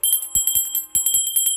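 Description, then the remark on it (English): A bell rings loudly in a house on February 28, 1944, with rapid, rattling strikes, bright metallic tones sustaining between hits, in two quick bursts separated by a brief pause. No voices are heard. “Soft music is playing behind the chatter of a full house when all of a sudden, the bell rings.”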